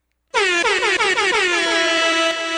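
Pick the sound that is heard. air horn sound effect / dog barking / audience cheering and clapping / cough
air horn sound effect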